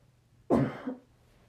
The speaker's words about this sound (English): I'm sorry, you have to hear, like, me coughing constantly. I don't know, I don't think I sound stuffed up, but maybe I do.